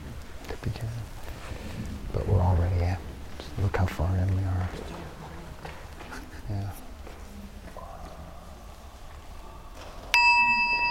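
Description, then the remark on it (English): A meditation bell is struck once near the end of a group session, as participants stand and walk around the room. Its clear, sustained tone rings out and hangs in the air after a stretch of low, muffled rumbling and murmuring sounds. “Then you can loosen your legs and we'll ring a bell in a moment.”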